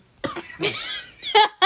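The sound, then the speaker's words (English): A person coughs repeatedly in a short, harsh fit, several raspy bursts in quick succession, fairly loud, with no speech in between. “You done with your coughing fit yet?”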